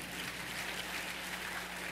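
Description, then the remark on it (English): Steady crowd applause fills the whole two seconds, a dense, even patter of many hands clapping at once with no voices standing out above it, clapping for a speaker having paid off over $40,000 of debt in five years. “You can clap for that.”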